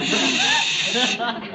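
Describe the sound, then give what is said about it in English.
A person hisses through their teeth during a telephone call, a steady, breathy, high-pitched hiss lasting over a second with no talking, tapering off slightly near the end. “are you hissing me?”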